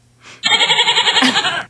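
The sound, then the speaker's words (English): A single loud goat bleat played as a sound effect button: a wavering, nasal cry with a rapid pulsing tremble, lasting just over a second and heard on its own. “You get the goat button.”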